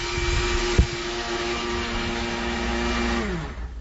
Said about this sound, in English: So here we have 12 ounces of Pepsi, some cranberries, and turkey. Making our own turkey lard concoction. Ah, so there you hear the blender in the back, and you know it's real.